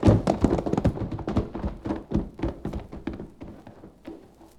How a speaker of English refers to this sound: coming from what appeared to be a little house ahead of us, and which served to lend wings to our horses' pounding hooves.